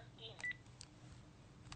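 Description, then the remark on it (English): Faint electronic telephone tones from an incoming call during the live show The Adventures of Pipe Man, a couple of brief beeps close together, over a low rumbling background with a soft hint of voices. “The phone is doing it.”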